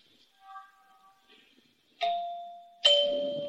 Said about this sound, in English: Nice chimes. Pretty.